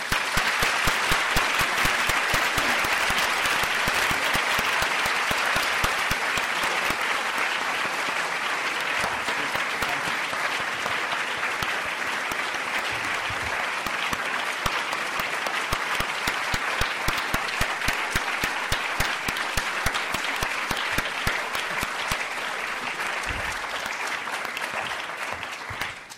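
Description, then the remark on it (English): Sustained audience applause after a speech by Professor Sen: dense, steady clapping from a large crowd that holds at a fairly even loudness for the whole stretch before tapering slightly at the very end, with no voices over it. “Your applause makes clear that you join me in recognizing both a great speech and a great global leader.”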